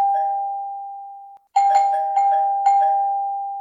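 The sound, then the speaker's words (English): A front-door doorbell rings with a steady chime that fades, pauses briefly, then rings again louder and brighter, striking three or four quick times in a row. No one speaks. “Oh, I think someone's at your front door.”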